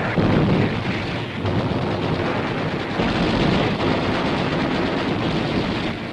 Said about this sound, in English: Jap pillboxes are blown up, along with the enemy's permanent concrete gun shelters, sunken 20 feet into the ground.